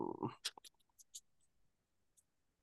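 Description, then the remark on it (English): A brief low murmur, then a quick run of soft clicking keystrokes as someone types up football picks, followed by one more isolated tap after a pause. The clicks sound quiet. “I'll put your picks in too since I'm typing them up.”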